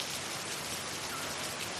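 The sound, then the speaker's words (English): Light drizzling rain hisses steadily and softly, a constant wash of fine patter with no pauses and no voices, fairly quiet and even throughout. “But I have stopped, in the seeping drizzle of the Stranger's Quarter, finding myself at a sudden intersection of neon signs and brothels and chemists”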